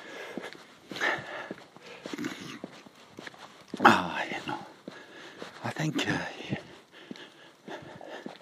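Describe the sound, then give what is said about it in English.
A dog gives a single sharp bark partway through, standing out against soft whispering and faint footstep-like shuffling in the background. “I heard barking. There he is.”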